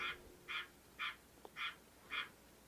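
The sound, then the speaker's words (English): A frog croaks five times in a steady, evenly spaced rhythm, each call a loud raspy burst standing out clearly against quiet background with no talking. “the Frog giving a shout out. He said hello.”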